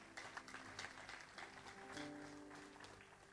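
audience clapping

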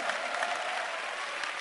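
audience clapping hands

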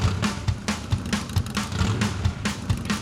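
motorcycle exhaust revving

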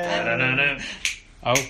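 finger snapping

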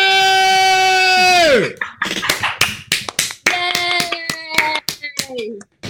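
hand clapping

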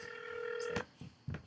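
telephone being dialed

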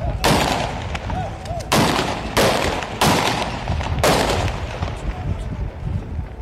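gunshots

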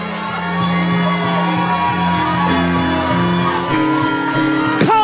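audience screaming and shouting

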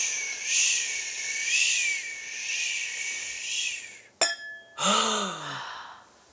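door chime ringing

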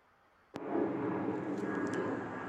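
airplane flying overhead

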